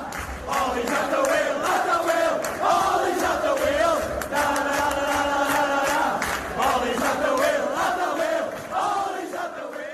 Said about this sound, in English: But I think one of the best clips from the weekend had to be the Liverpool fans staying in the away end at Old Trafford after the match had finished and just singing Ollie's at the wheel.